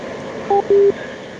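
Two short electronic keypad tones sound in quick succession, a brief beep followed by a slightly longer one, each a pair of steady pitches, over a faint background hiss with no talking.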